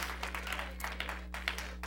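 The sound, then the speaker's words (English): A church audience claps together as a hand clap praise to the Lord, a steady, dense patter of many hands, a continuous crackling applause over a low electrical hum. “Let's give the Lord a hand clap praise for all the people that are here today in the house of the Lord.”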